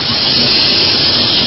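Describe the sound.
A voice imitates the loud sizzle of frying oil, as when frying tempeh, tofu or crackers, producing one steady, unbroken hiss that lasts about a second and a half without pause. No words are spoken.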